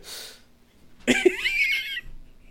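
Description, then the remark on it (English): A soft, breathy exhale is followed by a sudden, harsh cough burst that trails off into a raspy, wheezing breath. No one speaks. “Well, hopefully you have edited out most of my coughs, but I am dying on this side, so I'll just say goodbye to you now.”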